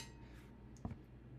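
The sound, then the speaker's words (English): A single quick, faint clink of wine glasses touching in a toast, brief and bright against a low, steady background hum with no one talking. “Cheers.”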